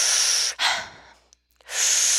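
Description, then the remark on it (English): Deep, forceful breaths in a breathing exercise: a long airy exhale, a sharp inhale that fades off, a brief pause, then another strong rushing breath begins. No talking. “So reviewing again, you got the sympathetic, which is where you're pumping you up, doing deeper inhales and exhales.”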